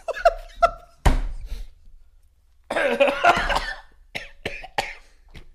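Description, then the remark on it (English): A person coughs and sputters after choking on water: two quick hacks, a sharp loud burst, then a rough, wheezy stretch of harsh coughing and a few final short coughs, with no speech. “I drowned a little bit.”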